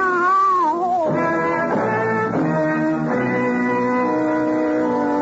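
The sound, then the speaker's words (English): Several cats meow and yowl loudly, their drawn-out, wavering cries overlapping one after another for about five seconds with no talking. “You lie in the blood of your death and try to explain how it was going to be to the attentive cats.”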